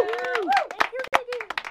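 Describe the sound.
An audience claps in a brief, uneven burst of sharp hand claps, mixed with overlapping voices and pitched exclamations from the group, all at a moderate level.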